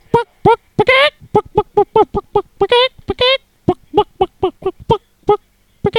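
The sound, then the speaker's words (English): A chicken in a played video clucks steadily, a quick run of short, sharp calls with a few longer squawks mixed in, fairly loud with no other sounds. “Look at the mannerisms of the chicken.”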